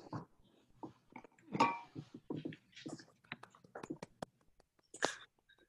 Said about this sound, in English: Aside from the dog barking. Sorry, guys. It's actually my dog.